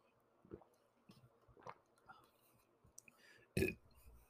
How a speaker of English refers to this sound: All right, let me take a quick sip of water.